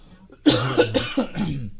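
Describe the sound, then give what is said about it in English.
A loud burst of coughing from a person with a cold, sore throat and chest ailment: several harsh coughs in quick succession with a raspy, phlegmy texture, starting after a brief quiet moment and no speech. “Pardon the coughs, man.”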